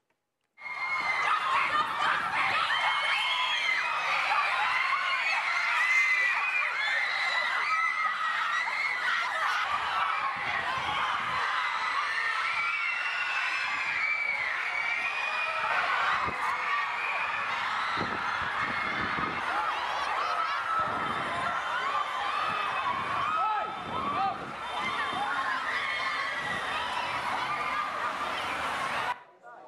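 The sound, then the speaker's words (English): A large crowd of fans following a celebrity makes a dense, steady clamor of overlapping voices, chattering and calling out with scattered laughter, staying loud and unbroken for about half a minute. “So let's watch those two videos to get an idea of what a crowd would feel like.”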